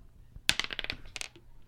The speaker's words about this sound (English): It was the dice. It was. It was the dice being rolled across the desk.